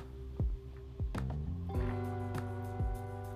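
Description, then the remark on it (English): Sipping of water: about five or six soft, wet gulps and swallows at uneven intervals, with no talking, over a faint steady background hum. “Hold on, I'm gonna take a sip of my water.”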